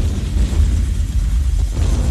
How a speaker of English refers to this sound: Somewhere behind them, they heard explosions.